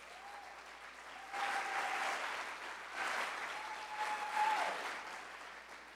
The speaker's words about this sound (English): Please give a warm round of applause